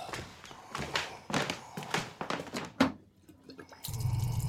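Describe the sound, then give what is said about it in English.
A few hollow knocks and clunks, then water starts gushing steadily from a tap near the end, a full rushing sound that continues to the finish, as someone gets water for another person. “I'll get you some water.”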